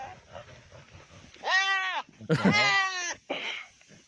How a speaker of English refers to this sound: But goats are dirty fucking fighters. So look at these fucking goats going at it.